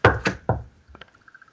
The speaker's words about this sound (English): you hear a knock at your door?